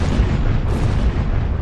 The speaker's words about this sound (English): And then suddenly three very loud explosions.